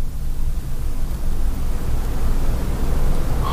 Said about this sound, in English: Except for that static, which I don't know where that's coming from.